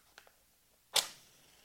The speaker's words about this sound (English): So let's light the candle here.